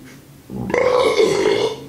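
A single loud, drawn-out burp rumbles for over a second, rising abruptly and then trailing off, with no talking over it.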